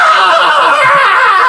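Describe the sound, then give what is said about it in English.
A voice imitates a strained, drawn-out scream, loud, held as one continuous rasping cry with no pauses for its full length. “He lets out a scream.”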